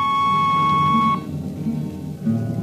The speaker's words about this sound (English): On a Hawk-class clunker in those days, damping was done by hand with a multiplying vernier and a danger peeper. Jetman slept with one ear tuned to that, and as long as the peeper ticked off slow and steady, we knew the ship was safe.